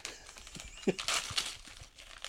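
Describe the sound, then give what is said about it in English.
Crackly crinkling of Marks and Sparks wrapping paper being pulled open as a present is unwrapped, a busy run of rustles and sharp crackles with a brief louder tearing burst in the middle. “It's fancy, I've got Marks and Sparks wrapping paper.”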